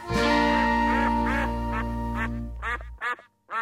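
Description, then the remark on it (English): A series of loud, nasal duck quacks in quick succession over a low steady hum that cuts out near the end, followed by a few final quacks. “That was part one of our two-part Drabble News Ducks Are Bastards special. You think you know ducks”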